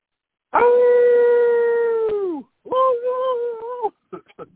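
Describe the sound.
A person howls like a dog: one long, loud, sustained howl that sags in pitch at the end, then a shorter second howl and a few quick clipped yelps.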